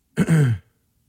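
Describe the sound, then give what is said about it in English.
A single short throat clearing or cough into a microphone, a brief voiced rasp of about half a second, loud and right on the mic, with silence around it and no talking. “You was on a mic when you were, I thought you was coughing at me.”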